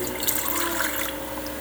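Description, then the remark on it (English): Water pours out of a cup in a steady, splashing stream for a second or two, fairly loud, with no voices over it. “I'll pour out a little bit for you.”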